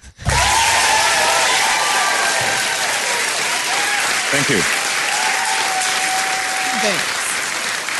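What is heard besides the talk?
fake applause sound effect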